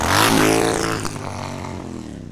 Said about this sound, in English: Back in New Jersey, Harry receives a similar envelope and abruptly rides his motorcycle away from the pool party.